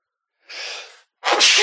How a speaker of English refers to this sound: Ooh, excuse me. See, this is the pepper that makes me sneeze. Is that? That's a spice sneeze right there.